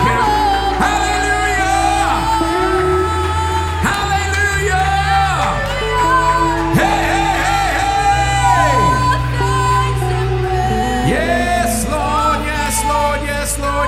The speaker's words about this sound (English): Can you give God a hand clap of praise this morning?